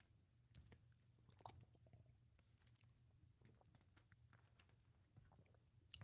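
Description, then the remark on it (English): Someone drinks water, with soft wet mouth clicks and small gulps scattered over a low, steady background hum. Nobody speaks. “Good water.”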